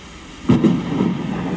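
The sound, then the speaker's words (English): A sudden low rumble of thunder breaks in over a steady hiss of rain, swelling briefly and then rolling on as a deep, sustained growl. “The rain has slowed down, but you can hear. You feel like there's a storm coming.”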